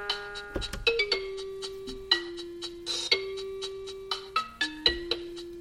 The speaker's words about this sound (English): Blues with bells.